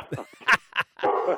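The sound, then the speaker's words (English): A dog barks several times in quick, uneven bursts, ending in a longer, drawn-out bark. It is moderately loud, with no talking over it. “Well, the dog says time's up”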